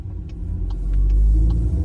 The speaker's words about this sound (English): This Wrangler we're driving, the 392, is also a ridiculous and great muscle car. Probably closer to the chaotic undrivability and lunacy of the original muscle cars than today's Dodge Chargers and Challengers.